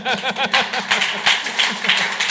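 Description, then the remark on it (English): A crowd applauds, many hands clapping in a dense, steady patter that holds at a fairly loud level for about two seconds, with a few voices calling out early on. “That's worth applause.”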